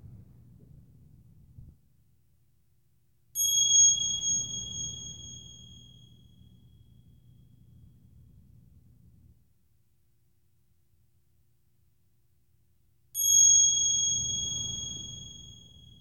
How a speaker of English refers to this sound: And I'm just going to begin by ringing the bell. So I'm just going to ask that just take a moment to listen to the sounds of the bell.